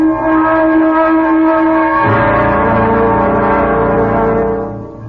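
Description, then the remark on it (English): A noisy vehicle engine runs loudly and steadily, its droning, tonal hum shifting to a different pitch partway through before easing off slightly at the end. No one speaks. “This is quite a machine. It sounds like my coffee grinder.”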